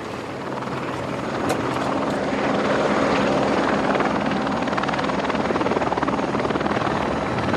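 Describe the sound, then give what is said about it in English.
Steady, loud helicopter rotor and engine roar from inside the cabin, a dense droning wash with a fast rhythmic thump running continuously throughout, no voices standing out. The helicopter is loaded with measuring equipment, mostly bags of 10-foot-long aluminium poles. Its front seat has been removed, and the passengers are crammed in the back. “The helicopter pilot on board, he has a rifle for polar bears.”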